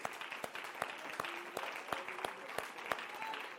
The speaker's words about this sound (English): Why don't we give the Lord a hand clap of praise?